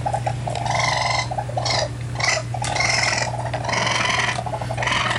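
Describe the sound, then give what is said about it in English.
An adult raccoon makes harsh, raspy churring and growling calls in a near-continuous series of gritty bursts with short breaks, loud over a steady low hum, with no talking. “I'm sure many of you heard a raccoon scratching at your door or rummaging around your trash can.”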